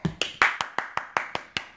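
About nine sharp hand claps in a quick, steady rhythm, fairly loud, each with a brief ringing tail, with no voices.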